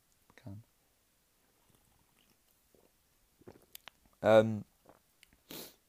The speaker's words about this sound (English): I'm going to have a sip of this.